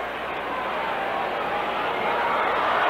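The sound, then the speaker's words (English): A large baseball stadium crowd at a Yankees game roars steadily, a dense wash of many voices yelling and cheering together with no pauses, holding at an even, fairly loud level, as a paper airplane blows out in front of home plate. “The crowd yells as a paper airplane blows right out in front of home plate.”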